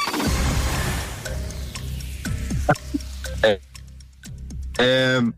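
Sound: countdown clock ticking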